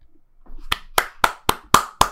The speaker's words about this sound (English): I love the clapping, boys. Thank you. Thank you. Thank you.